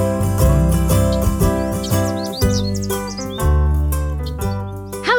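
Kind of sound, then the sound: bird, birds chirping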